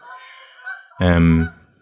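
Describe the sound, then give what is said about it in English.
Canada geese honking as they fly over Hollywell Dean during bird watching, many geese passing: a few fainter calls, then one loud, drawn-out nasal honk that cuts off abruptly. “Loads of geese flying over. Canada geese, those are.”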